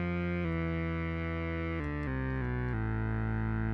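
A thick, buzzy synthesizer tone with two layered oscillators holds steady, then steps through a few pitch changes as the octave is changed, sounding dense and slightly distorted, with no talking.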